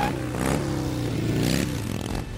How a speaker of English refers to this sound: Motorcycles. There is something about motorcycles. The experience of moving through the air at speed that attracts people. And if there is something about motorcycles in general, there is more than a mere something about Harley-Davidson motorcycles.